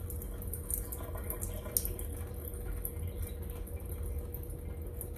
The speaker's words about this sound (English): Let's get back to my shower. Ice cold shower is hitting again. It's a cold one.